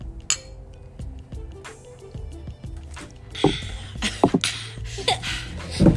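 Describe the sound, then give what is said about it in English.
Beer glasses clink together in a toast, several sharp bright taps, set against a low background rumble and faint shuffling noise. “Yeah, anyways, cheers, by the way. Cheers.”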